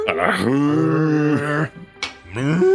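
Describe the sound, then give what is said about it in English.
A voice imitates an elk with a cow-like moo, holding a long, low, droning tone for over a second, then after a brief breathy pause starts a second moo that rises in pitch. “It's more of a cow, I guess.”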